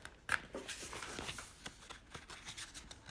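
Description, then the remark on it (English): Book pages being turned: a sharp papery flick followed by a few seconds of soft, crinkly rustling and light brushes of paper, fairly quiet, with no voices. “When I'm turning pages so that you don't have to hear this.”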